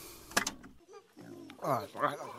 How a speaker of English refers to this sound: It's monkeys. There's monkeys in the background. Is that a marmot? Is he at a safari park? I wasn't focused. I was just tailing him hard. He went into a zoo, and that's all I know.